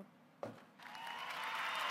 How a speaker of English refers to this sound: Yeah, there's some applause for you.